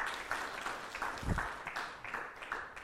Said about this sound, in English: thank you very much. Round of applause. Very good.